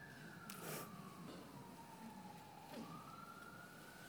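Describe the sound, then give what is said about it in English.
An emergency siren wails, its steady tone slowly sliding down and then rising again over faint traffic-like background noise, with a couple of brief bursts of noise. “Don't you like the way the siren is saying, "Yeah, that's right, see Paris first"?”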